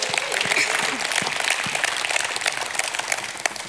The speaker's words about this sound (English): Give God a hand clap and a shout of praise.